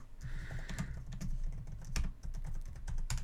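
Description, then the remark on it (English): Rapid, uneven clacking of keys on a computer keyboard while typing a search for the Flash versus Arrow promo: a steady flurry of sharp taps with a few louder strikes, and no voices. “So, did you want to real quick type in Flash versus Arrow promo?”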